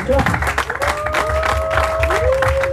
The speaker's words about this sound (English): I want us to clap for him.